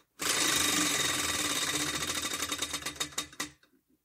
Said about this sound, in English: You know what? Spin the wheel one last time. Okay. This is an extra bob.